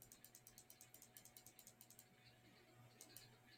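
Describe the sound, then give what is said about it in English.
Rapid, evenly spaced computer clicks as someone clicks through quickly, tapping along quietly for about two seconds, then a pause before a couple more isolated clicks; soft, with a faint low hum underneath. “Now we're just clicking through real quick.”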